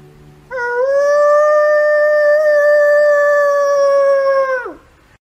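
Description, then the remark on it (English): A person imitates a wolf howl with one long, loud, steady note lasting about four seconds, then dropping off in pitch at the end, with no other sounds around it. “But here's something I might do when I'm out there as far as a howl.”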